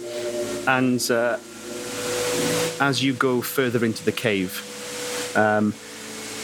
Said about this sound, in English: So you wander into the cathedral cave and you are just deafened by the sound of a huge waterfall in the center of the room. I can hear kind of like a flow music. Of water. And kind of like organ music, I'd say.